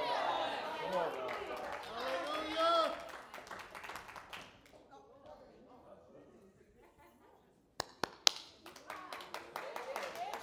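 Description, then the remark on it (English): An audience claps during praise and worship: a few sharp, scattered hand claps break out after a stretch of voices and quieter murmuring, followed by loose, irregular clapping that continues to the end. “Your hand clapping.”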